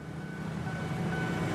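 Steady rumble of a train passing through a railway station in central Jakarta, a dense low mechanical drone with a faint high whine, continuous, no voices.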